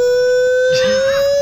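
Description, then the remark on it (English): A loud alarm siren sound effect: a steady, piercing high tone holding throughout, joined partway by a rising and falling warble, with no voices. “Sound the Franco alarm.”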